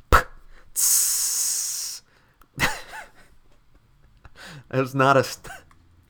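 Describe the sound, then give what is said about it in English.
A bottle of Coca-Cola pops open with a quick sharp crack, then a loud, steady fizzing hiss for over a second, followed by short hissy bursts and some vocal sounds. “That was me popping open a bottle of Coca-Cola and it fizzing.”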